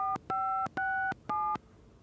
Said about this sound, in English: He walked right into the phone booth, closed the door behind him, and called his old number.